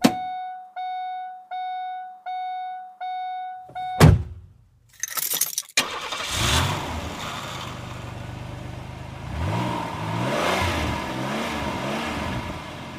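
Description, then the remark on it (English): A car's warning chime beeps steadily, a door thuds shut as someone gets in with the keys, then the starter cranks and the engine catches, idling loudly before revving up and down a couple of times. “And we're going to go ahead and get in this car and get this motherfucker started, all right?”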